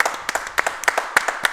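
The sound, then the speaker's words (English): A burst of applause for Sean Clifford, many hands clapping at once in a dense, crackling wash with sharper individual claps popping out above it, steady throughout. “And one more round of applause, and this is a big one.”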